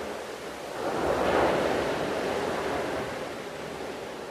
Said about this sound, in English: and so you can hear the kind of crashing wave in that moment, and I sure do love me some Pacific Ocean. He happened to be in Hawaii at the moment that I asked him if he would send me a sound, and so the sound of waves was perfect.